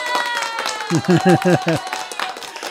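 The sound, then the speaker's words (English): A round of applause, a steady wash of clapping throughout, with a short burst of voiced, rhythmic syllables rising over it midway, like a person cheering or calling out. “Everybody, give him a nice round of applause.”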